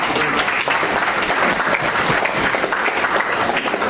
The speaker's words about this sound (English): Okay, well, there we go. So, praise the Lord. Give her a clap.